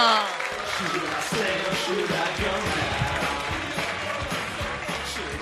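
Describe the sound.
A crowd claps and cheers steadily at full volume, with whoops and raised voices rising over the applause and low, rhythmic thumps pulsing underneath throughout.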